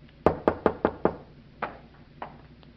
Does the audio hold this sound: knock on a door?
yes